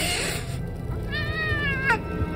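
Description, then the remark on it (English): Shadow the cat hisses loudly before darting into the hall, the breathy noise giving way to a short, wavering, high-pitched yowl near the end. No one speaks. “Shadow, who had been curled contentedly in a nearby chair, hissed loudly before darting into the hall.”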